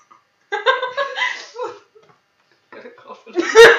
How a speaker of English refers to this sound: Okay, we're back. Coughing fit over. You might hear, like, little swishes of water because I'm trying to, like, just keep drinking so I don't cough.